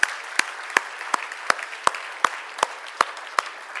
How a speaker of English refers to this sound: Let us applaud City Hill for all the great work that you've been able to do.